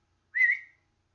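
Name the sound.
cat meowing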